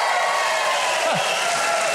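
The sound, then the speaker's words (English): A live audience applauds steadily, a dense wash of many hands clapping at once, fairly loud and continuous throughout, with no voices standing out above it. “This is a great crowd full of great Americans.”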